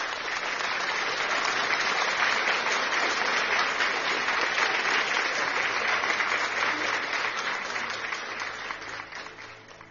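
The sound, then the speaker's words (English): A large church audience claps loudly and steadily in praise of God, dense overlapping applause lasting several seconds before gradually tapering off at the end. “People of God, let's give God another mighty clap of praise.”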